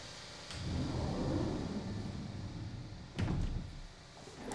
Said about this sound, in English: Let me close the door real quick.